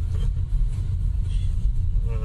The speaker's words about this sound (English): Suddenly there was like a whole bunch of traffic coming down this little country road.